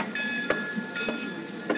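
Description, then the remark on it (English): A passenger train rumbles steadily along the rails, with a faint high whine above and regular clacks from the track joints about every half second. No one speaks. “Flying out here from New York last night and taking a train back this morning isn't my idea of fun, though.”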